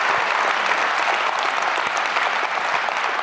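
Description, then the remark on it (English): An audience at a Christmas morning church service applauds steadily, a dense wash of many hands clapping at an even, sustained loudness for a few seconds with no voices standing out. “Yeah, please don't make me applaud myself.”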